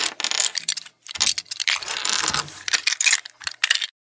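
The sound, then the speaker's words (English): Small plastic Lego toy bricks clatter and rattle together in several quick bursts, fairly loud, with brief pauses between handfuls being jostled. No one speaks. “Legos? There it is.”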